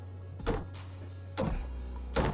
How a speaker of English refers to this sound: What are you doing? Are you banging your head on the table?